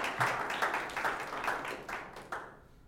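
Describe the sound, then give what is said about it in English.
A crowd applauds with steady, rhythmic clapping, broad and bright, that carries on for a few seconds before thinning out and fading at the end. “Let's clap for that.”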